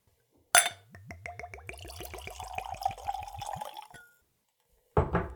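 Room-temperature dark rum distilled from molasses glugs from a bottle into a small tulip-shaped Glencairn nosing glass in a quick, steady rhythm of rising-pitched pulses, framed by a sharp glass clink before the pour and another after it.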